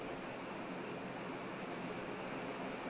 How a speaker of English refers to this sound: That sound in the background isn't traffic, it isn't airplanes, isn't an air conditioner. It's the ocean.